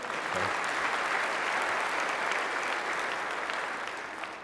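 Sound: audience applause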